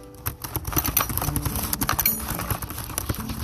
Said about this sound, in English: So I got busy typing up the invitations.